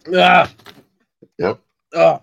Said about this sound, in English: Yep. Oh, wow. He's burping.